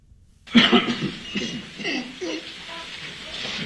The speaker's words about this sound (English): So it started with a loud cough and sneeze, and the Archbishop saying, "Mr. President."